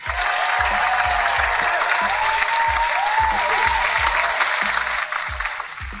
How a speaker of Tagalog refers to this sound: Masigabong palakpak ng uli dyan.